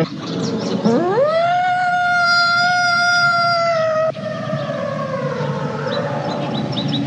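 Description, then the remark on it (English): A woman doing primal scream therapy lets out a long primal scream, sweeping up sharply to a piercing, steady pitch held for about three seconds, then dropping into a lower, rougher wail that trails on. “I don't want to be impolite, but what's that screaming? It's just my mother's primal scream therapy.”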